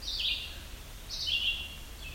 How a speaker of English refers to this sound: Sounds kind of like a rubber toy. That is yellow-bellied sapsucker.